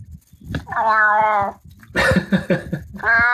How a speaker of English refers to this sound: You sound like you have a cold. Your voice is very deep, my friend. Right. Wow. That's a new kind of meow, buddy.